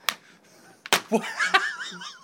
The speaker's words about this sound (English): You just slapped me. Stop. Ow, because when you actually slap me just now, I hurt my neck and my back at the same time.